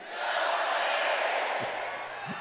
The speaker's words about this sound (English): And he kept doing that, guilty or not guilty. And, of course, the crowd kept shouting guilty.